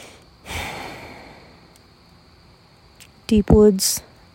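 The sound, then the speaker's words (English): A steady, high-pitched trill of crickets runs faintly in the background throughout, at night in the woods beside a fire, with a breathy exhale early on and a brief burst of vocal noise near the end. “The crickets are going off too.”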